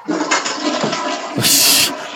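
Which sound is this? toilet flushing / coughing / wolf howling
toilet flushing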